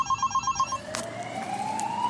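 signal or alarm, siren

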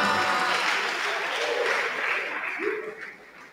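crowd, audience clapping

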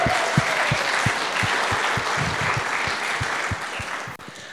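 crowd, audience round of applause

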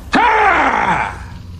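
human body sound, man yelling loudly

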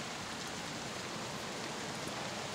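nature, rain falling

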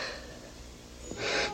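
human body sound, snoring

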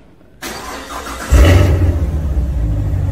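vehicle, car engine revving

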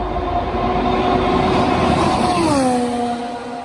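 vehicle, formula 1 car engine

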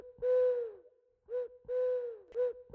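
bird, owl hooting

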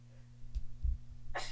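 human body sound, sneeze

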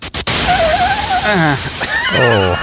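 sound effect, synthesized white noise

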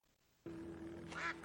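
bird, duck quacking

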